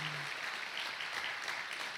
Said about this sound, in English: this is a special couple who's poured their lives into New Song, and we've poured our lives into them. Can we clap for them and tell them how much we're going to miss them?